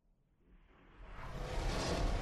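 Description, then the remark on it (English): A big, airy whoosh of an older elephant's breath swells steadily louder over a couple of seconds, a deep rushing gust with no voices around it. “And the sound of his breath kind of like, I imagine is how it sounds when you're in like a cave or something, and there's like a gust going through, just this big whoosh in and a big whoosh out.”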